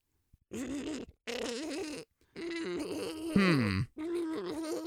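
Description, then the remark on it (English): A human voice imitates the faltering, impaired purr of a cat with a cancerous growth (sarcoma) in its vocal folds next to the purr box, as the cat is patted: four rough, groaning bursts broken by short gaps, one of them sliding down in pitch into a gravelly rattle. “It has a cancerous growth in its vocal folds right next to the purr box. So it can't purr? Well, it can, sort of.”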